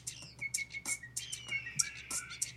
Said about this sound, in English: No, that's not an eagle. It's a red-tailed hawk.